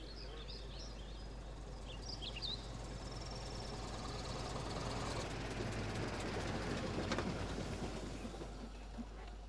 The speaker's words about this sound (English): taxi car just arrived